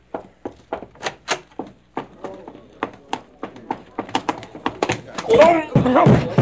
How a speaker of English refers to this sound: did you knock people down like that all the way over?